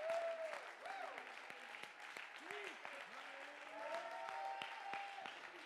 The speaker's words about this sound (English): Come on, stand to your feet, clap your hands, and give him praise.